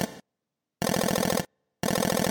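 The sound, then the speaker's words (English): A sped-up voice, Ozzy's mother talking quickly as she comes into the kitchen, chatters at frantic speed in three rapid-fire bursts with short silences between them, its syllables blurring into a buzzing, machine-like rattle. “That was Ozzy's mother talking quickly.”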